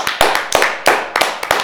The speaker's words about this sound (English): Round of applause.